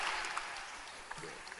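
An audience claps together in a steady, dense burst of applause lasting under two seconds, with no individual claps standing out and the level fairly even throughout.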